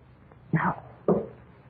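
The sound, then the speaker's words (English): Two heavy knocks on a basement door, about half a second apart, each a dull, hollow thud that fades quickly, with quiet background hum and no voices. “That knocking. How funny it sounds. Those kids. But it's from the basement door.”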